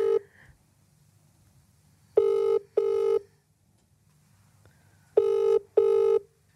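An outgoing phone call to a competition winner: the ringback tone sounds two double rings, each a pair of short buzzy bursts with a pause between pairs, clear over a faint low hum with no talking.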